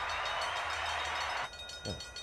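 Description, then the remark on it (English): A train sound effect: a train rushes by with a loud, steady roar that cuts off abruptly partway through. A quieter rattling clatter and a brief swooping tone follow, with no voices. “I would like to try to do it the way the train passes by.”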